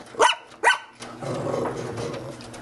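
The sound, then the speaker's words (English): A pedigreed labradoodle puppy gives two quick, high-pitched barks, about half a second apart, then a steady low background hum takes over. “A pedigreed labradoodle puppy”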